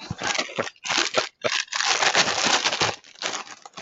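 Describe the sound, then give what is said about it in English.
Someone opens a cardboard box of Lucky Charms-inspired Lucky Charms cereal: a few short bursts of crinkly tearing and rustling, then a longer, steady crackle of paper and plastic, loud and with no one talking. “I'll put it up toward the mic, but I'm going to open up the box of Lucky Charms inspired Lucky Charms.”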